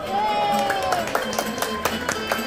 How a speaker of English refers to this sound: So everyone claps. So you know they. Yes. So they did the same thing for Donald and Daisy and Mickey, and it's really cool because you know, like, it gets everyone clapping for a hot minute